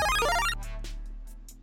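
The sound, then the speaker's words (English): A bright electronic alarm ringtone, rung to mark the Super Chatter of the day, trills in a rapid, high-pitched melodic pattern for about half a second, then breaks into short bursts of hiss over a low hum. “Let me ring the alarm.”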